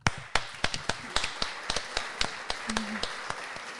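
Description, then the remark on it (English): A run of sharp, crisp hand claps, roughly fifteen of them at an uneven, slightly hurried pace, each a short bright snap standing alone with no voices. “Clap, white people.”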